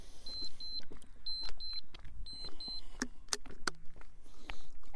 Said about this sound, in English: Extra walk breaks are going to have some more hydration here, because I know I'm going to beep pretty soon here. And there it is.